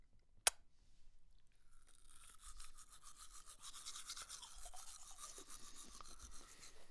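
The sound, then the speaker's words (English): A sharp click, then steady scrubbing of a toothbrush against teeth, its rapid back-and-forth strokes forming a rhythmic, bristly rasp that continues to the end with no talking. “Did you see my toothbrush?”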